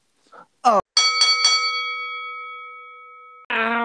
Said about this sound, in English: We're going to take a quick break before we hop into topic number two. We'll be right back. After this quick break. Which is literally just a bell ringing.